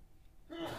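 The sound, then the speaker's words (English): A single sneeze bursts out after a moment of near silence: a sharp, breathy rush of noise with a brief voiced catch in it, fairly loud and with no talking. “Bless you.”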